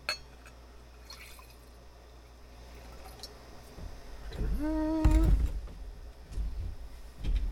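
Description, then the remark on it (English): Wine is poured into a glass, a short gurgling pour whose pitch rises quickly as the glass fills, followed by a few soft clinks and handling sounds. “So I'm really curious about your pours. You pour so perfectly.”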